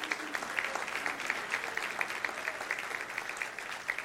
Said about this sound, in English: Would you give him a big round of applause?